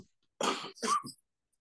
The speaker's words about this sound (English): I'm going to cough. Where's my microphone? I need to cough. I've got a tickling throat.